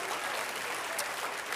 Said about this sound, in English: Oh, everybody clap your hands unto the Lord.